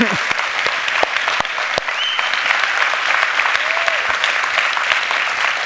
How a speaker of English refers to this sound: I think we should clap now, don't you? It was amazing.